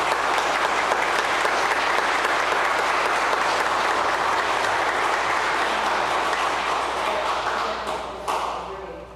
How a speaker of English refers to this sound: So we don't normally do this, but in thanksgiving and recognition of your service, I think it's appropriate that we clap for you. Thank you.